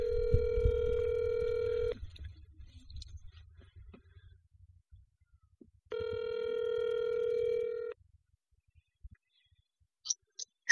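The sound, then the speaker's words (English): A phone call ringing out over speakerphone, with the phone held up to a microphone: two steady, buzzy ringback tones about two seconds each, separated by a quiet gap with low rumble, followed by a few short clicks as it connects. “And we don't know how to set up a line properly, so I'm going to have to put it on speaker and hold it up to the microphone.”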